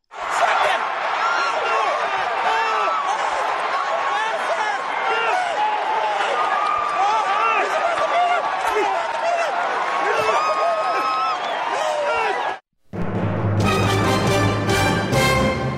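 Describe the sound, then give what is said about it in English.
A large crowd cheers and shouts without letup as a horse race finishes at the Belmont, with Rob Gronkowski cheering for his horse, excited voices piling over one another for about twelve seconds, then cutting off abruptly into a brief, different tonal segment. “There was a Rob Gronkowski cheering for his horse at the end of the race at the Belmont.”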